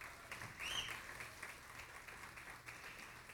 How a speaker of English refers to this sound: Praise God this morning. Amen. Give our band a big round of applause.